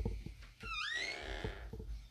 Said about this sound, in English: Let me close this door.